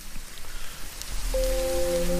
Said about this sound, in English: Someone else has been on to say that they really, really like the sound of sizzling bacon.